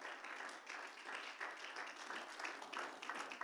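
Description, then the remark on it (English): A church audience claps to the Lord in worship after a prayer, a dense, steady wash of applause, many overlapping hand claps sustained evenly for several seconds without any talking. “Clap your hands to the Lord and worship him one more time.”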